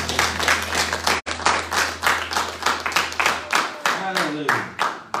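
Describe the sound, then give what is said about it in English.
A church audience claps together in steady, loud applause, a great big hand clap for God after praise and worship, a dense patter of many hands that continues throughout, with voices rising faintly beneath it near the end. “And let's give God a great big hand clap.”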